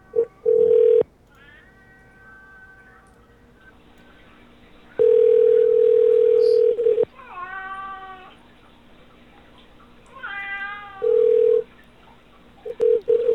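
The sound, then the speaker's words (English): A cat lets out several drawn-out, wavering meows, clear, broken up by loud steady electronic tones like a dial tone that start and stop in between. “So just breathe, meow, and breathe. He's fine.”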